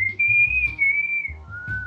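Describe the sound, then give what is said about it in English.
A person whistles a short tune imitating the whistle signal from The Hunger Games, a long steady high note that wavers slightly, then drops to a lower held note, clear with a low background hum. “I remember everyone doing the whistle thing during class.”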